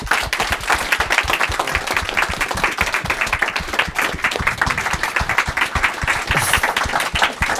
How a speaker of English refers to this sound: And on that note, I think you all, everybody that's involved in this, deserve a huge round of applause.